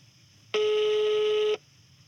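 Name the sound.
phone call ringing tone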